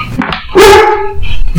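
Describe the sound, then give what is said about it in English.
A male dog on high alert and wanting to play lets out a loud, excited bark with a rising, yelping pitch, followed by a shorter sharp bark, over low background rumble. “He's on high alert. Yep, he's like, you gotta play with me.”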